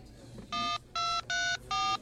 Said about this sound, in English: Interesting. I didn't know anyone used that old phone anymore.